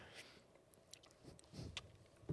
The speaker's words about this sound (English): Well, actually, you're chewing Snickers, so I guess I'll go first? Is that what you... Or do you want to try and talk? I can talk fluently with the Snickers in my mouth.